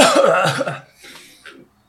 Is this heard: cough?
yes